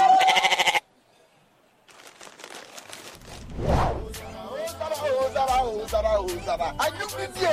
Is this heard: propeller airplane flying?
no